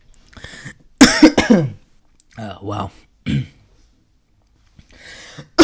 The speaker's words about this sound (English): Wow, I need to cough.